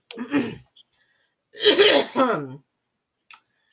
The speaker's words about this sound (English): Damn, you old lady coughing up the lung over here. Shit. I have phlegm because I ate so much dairy today.